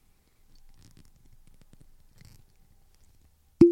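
A cork pops out of a bottle with one sharp, loud pop and a short hollow ring, after a few seconds of faint low rustling and creaking as it works loose.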